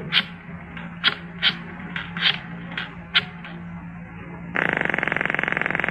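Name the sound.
telephone number being dialed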